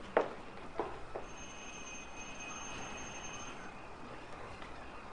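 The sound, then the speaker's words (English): A few soft clicks, then a house doorbell, rung by police officers at 8:46 p.m., sounds with a steady, high electronic tone that holds for a couple of seconds and fades out. It is faint, with no talking. “I don't see the bell.”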